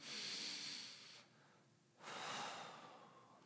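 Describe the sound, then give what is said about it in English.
A deep breath drawn in with a soft, airy rush, a short pause, then let out in a long breathy exhale, fairly quiet, with no talking. “If you, everybody do this, just put your arms out, your palms up, close your eyes, take a deep breath.”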